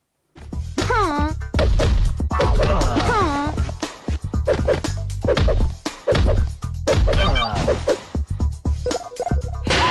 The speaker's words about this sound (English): So, as you would have heard, it's just constant, like, punch, punch. Like, it's a weird groan, and it's every, like, three punches that she does. And each character like your, does the exact same the noise thing that you make.